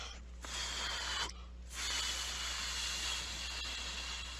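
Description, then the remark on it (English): Two breathy hisses of air blown through pursed lips with no clear tone, a short one then a longer sustained one, as a person tries and fails to whistle, over a low steady hum. “Nope, can't whistle.”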